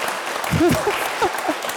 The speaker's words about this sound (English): deserves another round of applause from all of us. That was amazing. Thank you.